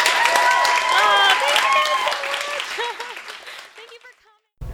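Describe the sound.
An audience at a Skylight Books author reading bursts into dense, steady applause with a few cheering voices on top. The clapping thins and fades over about four seconds, ending in a brief silence before an abrupt cut.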